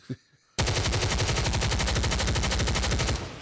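automatic gunfire sound effect

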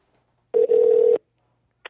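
phone call ringing

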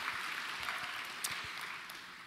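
audience applause

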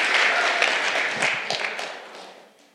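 audience applauding

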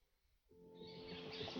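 baby bird chirping

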